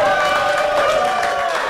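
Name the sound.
audience clapping and cheering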